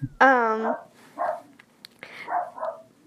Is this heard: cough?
no